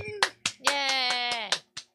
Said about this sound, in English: Yay! Spattering of applause. Yeah, I know. There's only like... A splattering of us in here. Yeah, a couple of us in the studio.